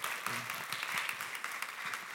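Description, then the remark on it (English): A crowd applauds three young adults called forward, a dense, steady wash of many hands clapping at once with no individual rhythm, holding at an even, fairly loud level throughout. “You give them a round of applause.”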